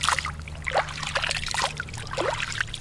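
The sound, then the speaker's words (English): Spring water trickles and splashes in small, irregular drips and dribbles as a farmer scoops it out of a village spring and lets it fall through his fingers, fairly soft, continuing steadily for a few seconds with a faint low hum underneath. “scoops water out of one of his village's two springs and lets it fall through his fingers.”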